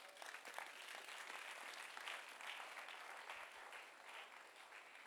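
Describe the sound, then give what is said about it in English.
Sustained applause from an audience during preaching, clapping for the Lord: a dense, steady patter of many hands clapping at once for about five seconds, with no one speaking over it. “If you like it, clap for the Lord.”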